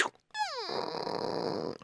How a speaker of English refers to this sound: What's that I hear snoring?